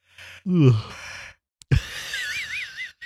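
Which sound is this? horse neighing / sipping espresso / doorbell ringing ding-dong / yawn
yawn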